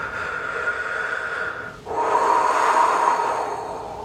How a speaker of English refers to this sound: One more nice deep breath. Breathing, exhaling down into the pelvis.